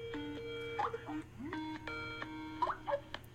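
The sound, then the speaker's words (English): A Skype call ringing tone, calling a phone, repeats in steady electronic bursts with a bright, harmonic pitch, separated by short gaps, over a low steady hum with a few brief voice sounds in between. “He is on location, but he added Skype to his phone.”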